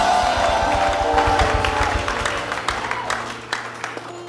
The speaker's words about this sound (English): Give the Lord a clap and a shout in the house.